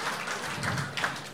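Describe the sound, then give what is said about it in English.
A crowd breaks into applause, a steady, dense wash of many hands clapping at once, holding an even loudness for just over a second with no voices standing out; the audience claps to show they have been to Bunghole Liquors, a small liquor store. “But have you, round of applause if you've been to Bunghole Liquors.”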